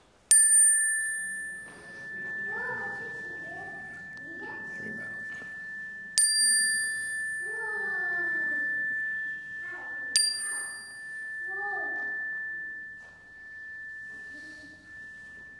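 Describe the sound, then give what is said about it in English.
A chime is struck three times at uneven intervals during a worship service in a sanctuary, each clear, bright strike ringing on with a long, steady sustain, while soft, indistinct voices murmur underneath. “As I ring this chime, I invite you to share those cares that are on your heart into our sanctuary.”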